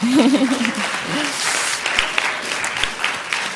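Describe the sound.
An audience breaks into steady applause, a dense wash of clapping hands that continues throughout, with a brief voice rising over it at the start.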